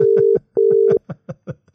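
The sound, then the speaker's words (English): A telephone ringback tone sounds as a steady double ring, two long buzzing pulses with a short gap, on an outgoing call to Brian Moore, with a voice talking faintly underneath and continuing after the ring stops. “It might be a two ring.”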